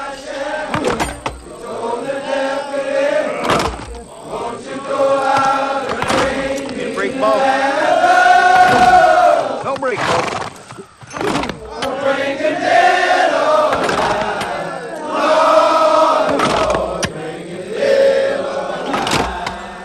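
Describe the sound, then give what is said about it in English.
A real recording of an actual chain gang singing the work song Po Lazarus in unison, drawn-out melodic lines rising and falling, punctuated every few seconds by sharp, loud percussive strikes like tools hitting. “Apparently, that was a real recording of an actual chain gang singing that song, what you hear in it.”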